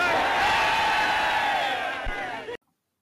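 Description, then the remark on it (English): A large crowd cheers loudly and continuously, a dense roar of many voices with whoops and yells, holding steady for about two and a half seconds before cutting off abruptly. “Now, I do want to say that, of course, the people that are there in front, and if you've noticed the immense cheering that's going on, the majority, the vast majority of British citizens are in favor of appeasement.”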